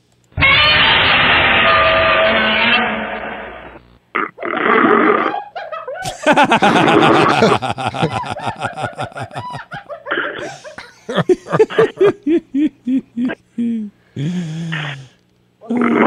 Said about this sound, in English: He's the best in the business. This is a national level snore. The local shows do not have snores like this.